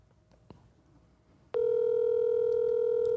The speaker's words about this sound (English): It's ringing. Can you hear it?